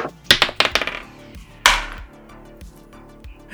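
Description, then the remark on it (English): Several twenty-sided dice (D20s) are rolled across a hard tabletop to see who gets the lowest: a quick burst of sharp clicks, then one louder knock followed by a few softer, fading taps as they settle. “What we should probably do is a D20, and whoever gets the lowest will tell us what happened previously on Beyond the Dice.”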